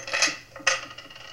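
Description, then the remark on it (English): Two sharp metallic clinks of keys and coins from a person's pockets being set down on a hard table, with a brief ringing tail after each. “take everything out of your pockets. Put it right down here.”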